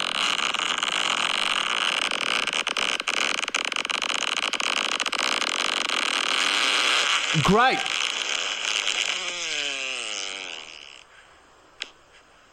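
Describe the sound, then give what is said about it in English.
A loud fart: sputtering, wobbling tonal bursts rise out of a steady hiss, then it trails off and ends with a single short, sharp pop. A voice briefly speaks. “Dude, the little pop at the that's end. That's a 9.5. That is a very good fart.”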